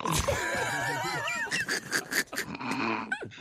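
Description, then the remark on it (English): A quick, rough nasal snort, fairly loud, amid a busy jumble of throaty, pig-like grunts and wheezy noise. “Is that a ripper or a snore? That was just a quick snort.”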